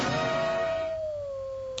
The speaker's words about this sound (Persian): فلفل یه زوزه بزن.